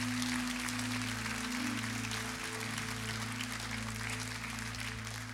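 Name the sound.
audience clapping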